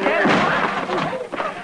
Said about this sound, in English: I think the door is locked, Mr. Dillon. Stand back a little. I'll kick it open.